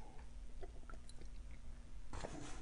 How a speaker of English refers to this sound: Let's pause. Let's have a little sip of green tea.